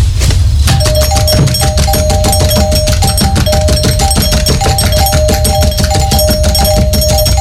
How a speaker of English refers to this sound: What the hell are you doing ringing our doorbell like that in the middle of the night?